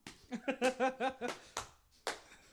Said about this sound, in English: Throwing in that double clap just to fuck people up.